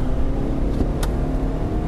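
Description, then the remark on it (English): A Toyota car engine with variable valve timing (VVT-i) runs steadily, a dense low rumble with a brief sharp click partway through, and no voices present. “It's a lovely sounding engine, isn't it?”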